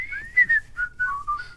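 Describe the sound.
Someone whistles a short melodic TV theme tune, the pitch gliding and stepping between notes in a clear, steady line. It is moderately loud, with no talking.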